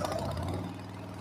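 An old motorcycle engine chugs steadily, a rough, throbbing low rumble that holds an even loudness throughout, with no voices.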